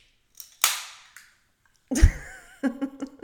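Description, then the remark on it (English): A bottle of bubbly is uncorked with one sharp, loud pop and a brief hissing tail, followed after a short pause by bursts of laughter. “I just felt you were going to go into a story, and this was the perfect time to subtly open my bubbly”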